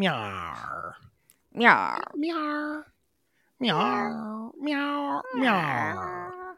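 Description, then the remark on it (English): A person imitates a cat's meow in a gruff, pirate-style voice: five drawn-out, wavering meows in a row, close and fairly loud, with short pauses and one longer gap midway. “Great pirate meow,”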